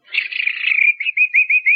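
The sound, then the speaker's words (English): A man imitates a bird call, whistling a shrill, warbling trill that breaks into four short, evenly spaced chirps. It's fairly loud, with no talking over it. “I did bird imitations.”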